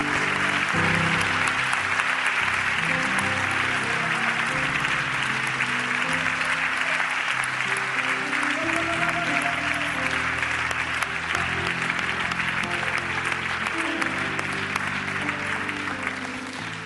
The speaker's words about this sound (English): Let's give God one good hand clap.